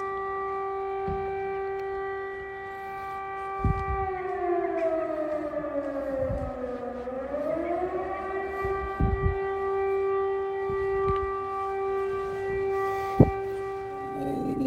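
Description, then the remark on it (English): A long, steady air raid siren in Kyiv, Ukraine drones over the whole stretch, sliding lower in pitch midway before climbing back to its wail, with a few scattered knocks and thumps. “Silence of Sirens, Kyiv”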